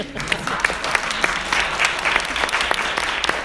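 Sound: audience applause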